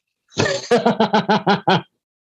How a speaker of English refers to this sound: This is not a COVID cough. This is a weed cough for your listeners.